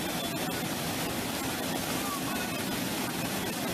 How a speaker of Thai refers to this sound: Okay, ครับเรามาดูด้วยกันนะครับตรงนี้เป็นน้ำตกแม่น้ำแห่งหนึ่งนะครับ